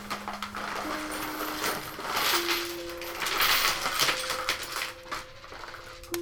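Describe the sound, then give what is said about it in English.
Coins clink and jingle repeatedly as they are shuffled and sorted on a table among pens, with bright metallic chimes ringing out over steady rustling. “Some coins, too.”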